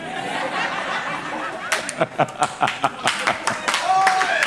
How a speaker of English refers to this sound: Clap for her.